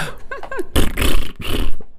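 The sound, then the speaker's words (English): A voice imitates a car-horn awooga as a fart: two quick swooping hoots, then a loud, buzzy, sputtering raspberry lasting about a second before it breaks off. “I don't know how an awooga sound would sound if you were farting it.”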